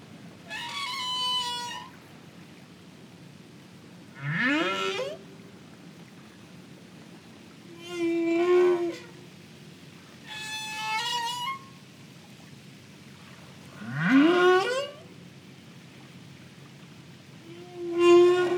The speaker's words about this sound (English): Sound with which we are all quite familiar now. It's almost become a cliche in a way. The sound of a humpback whale singing.